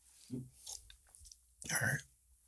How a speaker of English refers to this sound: Please. Let me take a sip.